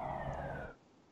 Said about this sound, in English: Sorry, I live next to a hospital. I don't know if you can hear it through there. Yeah, but there's like five cop cars and ambulance and something driving by.